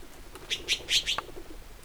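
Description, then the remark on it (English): A Mexican jay gives a quick run of four or five sharp, bright chirps in under a second, moderately loud, on a quiet trail in Big Bend among Mexican pinyon pines and yucca plants, with no talking. “So we're looking at a Mexican jay.”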